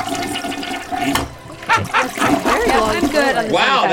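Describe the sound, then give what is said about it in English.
A toilet flushes with a loud, rushing swirl of water that goes on for several seconds, and a dog's yip or whine appears to cut in partway through. “Wow, that is a long flush.”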